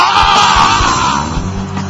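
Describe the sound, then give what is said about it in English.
An audience at a religious service roars together at the preacher's call in one loud, sustained shout imitating a lion's roar, holding steady for about two seconds with a broad, raw vocal texture. “I want you to roar against your prophet.”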